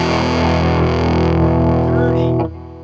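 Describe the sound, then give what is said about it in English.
A loud, thick distorted guitar tone through a fuzz pedal drones steadily and dense with buzzy harmonics, then cuts off abruptly near the end, leaving a brief fading tail. “That's dirty, dirty fuzz box.”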